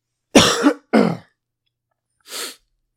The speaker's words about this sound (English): Let me clear my throat right quick.